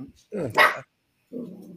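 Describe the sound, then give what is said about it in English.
A small dog belonging to one of the speakers lets out a sharp, high-pitched bark, followed after a short pause by a brief lower yap or growl-like sound. “Oh, was it your dog, Tim?”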